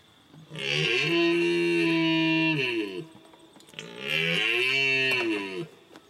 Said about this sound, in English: Now, I actually couldn't get a sound of just the mule deer, but I have a red stag. Similar.